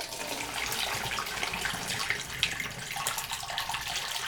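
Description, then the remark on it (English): A steady stream of liquid pours and splashes continuously into a vessel, with a hissy, bubbling texture and no voices. “I am pouring out now.”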